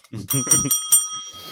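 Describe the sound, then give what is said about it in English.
A bright bell rings with three quick strikes, its clear metallic tone lingering and fading afterward, while a voice talks briefly underneath at the start. “I was like, where's my bell?”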